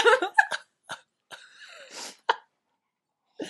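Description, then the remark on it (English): Harsh coughs in uneven bursts: a quick cluster at first, then scattered single coughs and a rough throaty stretch, with one last cough after a short silence. “Watch your cough there”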